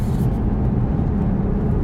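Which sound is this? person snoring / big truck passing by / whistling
big truck passing by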